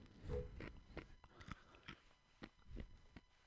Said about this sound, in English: I'm going to crunch some more ice.